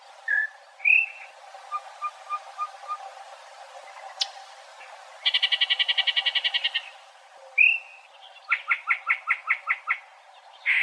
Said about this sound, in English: It's a very strange bird. And what does it sound like? Well, here's some snippets.